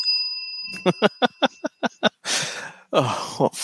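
A bell rung by two people rings out with a sustained metallic tone, struck about eight times in a quick rhythmic burst, then gives way to two loud, breathy exhales like sighs.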